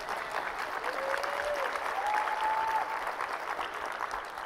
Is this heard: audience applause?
yes